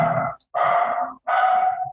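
A dog barks three times in quick succession inside an office, each bark loud and somewhat drawn out, with short pauses between them and no talking.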